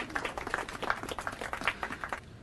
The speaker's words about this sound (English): Now you can applaud.